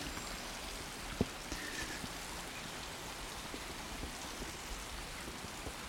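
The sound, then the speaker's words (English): A small stream, only a couple of feet wide in places, at William Clough rushes steadily over rocks, a continuous babble of flowing water with no voices, broken only by a single brief knock near the start. “Let's have another listen to this river because it sounds absolutely beautiful.”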